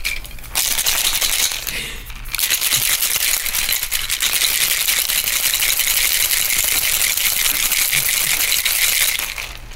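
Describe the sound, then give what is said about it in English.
Ice cubes rattle hard and fast inside a cocktail shaker as a lime cocktail is shaken, a loud, steady clattering that continues for several seconds after a brief pause near the start. “Let me put some ice in the shaker. So this is shaken because it is lime.”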